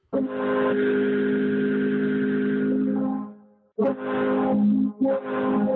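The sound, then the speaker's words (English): The horn of the ship Guardian, honked by Captain Dean, blares loud in a long, deep, brassy blast, then sounds twice more in quicker bursts after a brief pause, with no voices. “Actually, maybe the coolest thing I learned last year is that if you ask nicely, Captain Dean will honk the Guardian horn.”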